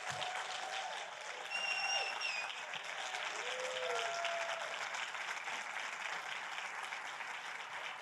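A crowd applauds steadily for several seconds, dense clapping with scattered cheers and a brief high whistle rising above it early on, cheering a man invited up to share his story.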